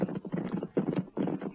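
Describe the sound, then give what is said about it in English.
Two horses with riders walk at a steady, unhurried pace across an open stretch between a fence and a dark house at night, a soft rhythmic clopping in clusters of beats, moderately loud with no talking. “The two horses and their riders slipped across the open stretch between the fence and the dark house, their only protection in the darkness of the night.”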